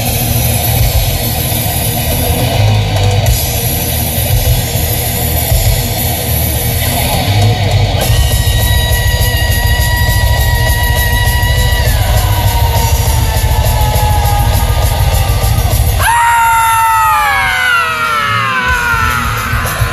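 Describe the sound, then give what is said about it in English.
Loud, dense, heavily distorted music plays nonstop at full volume from a CD player, thick with a low roaring drone and harsh yelled vocals, with sliding squealing tones bursting out near the end. “Go ahead and hit play on the CD player and let's melt some faces.”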